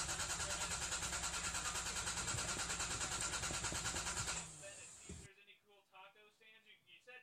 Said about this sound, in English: Duncan, your car's not starting.